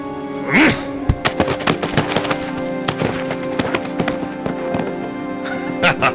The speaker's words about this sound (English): Dominoes cannot think, cannot act. All they can do is stand and fall. And this moment, this is me, knocking down the first domino.